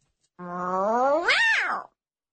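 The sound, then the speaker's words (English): A person imitates an angry cat, giving one drawn-out meow that starts low and strained, swoops up in pitch, then drops away. It is fairly loud and lasts about a second and a half. “Then the angry meow, but we only use this one on rare occasions because overall we're a very happy kitten family.”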